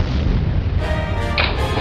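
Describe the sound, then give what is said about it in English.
A toilet explodes and floods the bathroom in a commercial for Mario Bros. Plumbing: a loud, rumbling blast with a burst of spraying hiss and splashing, a sustained explosive roar lasting a couple of seconds without any voices. “the toilet exploded!”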